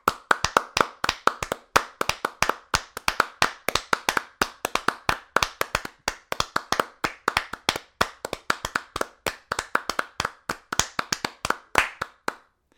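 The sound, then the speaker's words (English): A group of people applauding steadily for about thirteen seconds, sharp overlapping claps in a dense, uneven rhythm that holds its strength throughout, with no voices, then stops abruptly. “No, you want a sustained, respectful, exuberant applause.”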